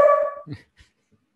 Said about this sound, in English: My dogs are barking.